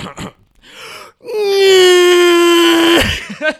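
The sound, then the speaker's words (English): A person imitates Godzilla's roar with a loud, sustained, strained vocal wail of about two seconds, holding a steady pitch with rich harsh overtones, preceded by short breathy sounds and ending abruptly. “That's my Godzilla roar.”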